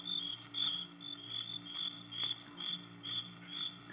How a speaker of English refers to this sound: We stood and listened. But there wasn't a sound except the crickets, shrilling so loudly the noise seemed to beat inside my brain.